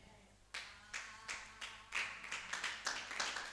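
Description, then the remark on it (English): A crowd of people claps together in a steady rhythm, roughly two claps per second, starting after a brief quiet moment and growing fuller and denser toward the end. “Oh, you can clap better.”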